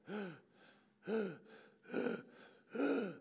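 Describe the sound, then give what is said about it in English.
Shallow, labored breathing of a sick, unwell person: four quick, strained breaths about a second apart, each with a raspy, slightly voiced catch, moderately loud with no talking. “There's breathing from someone who is sick and unwell, and the breathing is often very shallow.”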